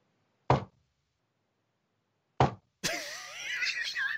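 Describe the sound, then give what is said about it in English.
Two loud knocks on the door of a coffin maker shop land about two seconds apart at a slow, deliberate pace, then an elderly voice breaks in with a strained shout from inside the shop right after the second knock. “Vallus' knocks are as slow as his talking.”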